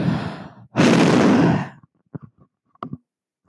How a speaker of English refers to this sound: Thank you for breathing all over the mic.